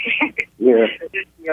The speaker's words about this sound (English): Oh, we got an echo. I like that. Playback.